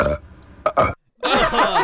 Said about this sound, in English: Round of Guess Who's Mouth Gas. Wow.